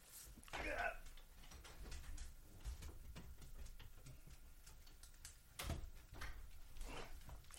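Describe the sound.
A back door is opened to let a fussing dog in, with a clattering knock early on and another sharp clunk a few seconds later over a low, rumbling background, with faint muffled voice-like sounds in between.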